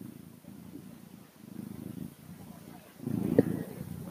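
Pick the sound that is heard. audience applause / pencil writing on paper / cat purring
cat purring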